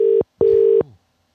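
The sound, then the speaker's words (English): Two loud electronic ring tones from a phone line, a short one then a longer one after a brief gap, steady and buzzing, with no voices present. “He's ringing. He's ringing.”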